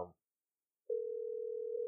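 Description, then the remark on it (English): A brief voice fragment, then a steady electronic telephone ringing tone starts and holds evenly for about a second, clear, as an outgoing call to NBA insider Joe Brito rings on the line without an answer. “Yeah, he ain't going to answer. Hope he does.”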